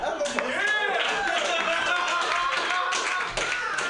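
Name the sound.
audience applause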